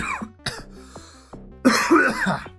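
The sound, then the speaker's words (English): A loud cough bursts out a couple of times, followed by rough throat-clearing and hacking, with brief quiet gaps between the fits and no talking. “Can you not cough?”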